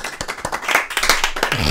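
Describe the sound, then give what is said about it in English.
An audience breaks into applause, a dense, steady patter of many hands clapping at once, loud and sustained throughout with a few sharper individual claps standing out. “Applaud me. I let you take it in and be like, wow.”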